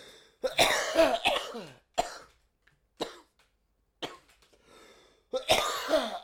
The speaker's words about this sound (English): God damn if you don't quit coughing.